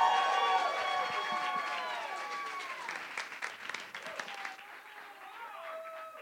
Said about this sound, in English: All right. Now, give a big round of applause